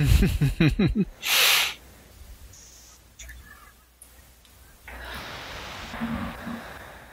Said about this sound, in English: King Kong's roar here will also be recycled in 1974 to use as King Caesar's roar.